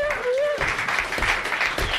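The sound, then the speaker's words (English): A small audience breaks into steady applause for the show's producer, the dense clapping swelling quickly and carrying on for a couple of seconds, with a brief voice or whoop just as it begins. “But a little round of applause”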